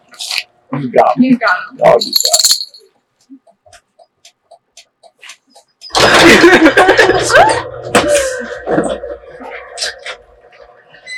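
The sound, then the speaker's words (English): Keys jangle in a loud burst lasting several seconds, a busy metallic jingling that follows a moment of quiet after brief talk, with a voice mixed in underneath. “Your keys.”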